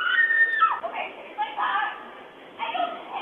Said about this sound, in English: A nearby doorbell camera captured the desperate cries, tearing through what was a quiet afternoon near Lake Nokomis.